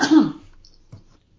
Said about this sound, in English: Sorry, I have to clear my throat.